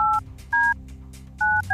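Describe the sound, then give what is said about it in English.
Touch-tone phone keypad beeps as a phone number is dialed to make a call: four short, clear dual-pitch tones with uneven gaps between presses, the last one cut off at the end, over a low hum. “getting another phone number from the computer now to call so we can play OttaWHAT this morning”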